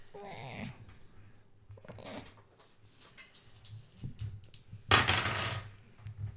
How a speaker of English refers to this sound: She rolls dice. Yes. And rolls then... the dice.